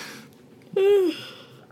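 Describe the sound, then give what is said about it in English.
A short voiced yawn: a breathy, tonal sound that swells abruptly and slides slightly downward in pitch over about a third of a second, then fades into quiet background. “Don't yawn.”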